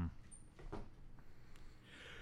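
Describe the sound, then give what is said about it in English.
A single sneeze bursts out at the very end as a sharp, breathy hiss. It follows a quiet stretch of low background noise with a few soft clicks. “Bless you.”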